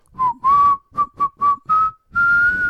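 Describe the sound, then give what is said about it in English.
Someone whistles a short tune, the Law and Order TV theme: six quick, separate notes climbing gradually in pitch, then one long held note to finish. No talking. “All right, now I need some Law and Order. Can you do that?”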